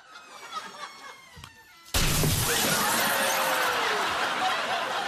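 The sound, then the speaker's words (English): Soft laughter and snickering give way to a sudden, loud crash as a chair, thrown in a game to try to jam it in a closing door, smashes into the door, followed by several seconds of sustained clattering, shattering noise. “Rosemary Schrager, step up and throw your chair.”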